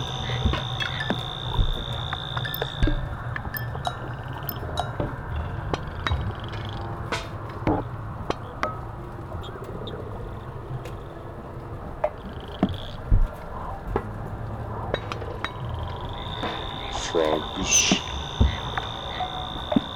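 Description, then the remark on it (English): A steady outdoor night chorus of frogs croaking, with a low continuous drone, scattered sharp clicks, and a high insect-like trill fading in and out at moderate loudness. “I imagine that... Frogs.”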